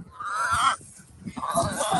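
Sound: chickens clucking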